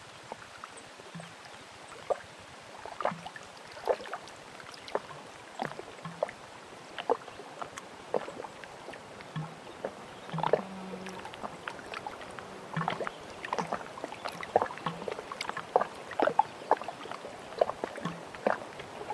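Canoe paddling on calm water in a national park wilderness after rain: soft, regular splashes and drips as the paddle dips and lifts, with faint knocks against the hull and a few bird calls in the background.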